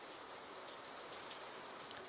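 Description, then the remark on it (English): Steady rain falls outside in the middle of the night with a soft, continuous hiss and faint scattered droplet ticks, even and unbroken throughout, gentle with no voices. “I hope you can hear the rain because it has me in such a peaceful mood.”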